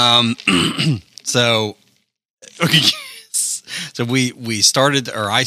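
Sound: throat clearing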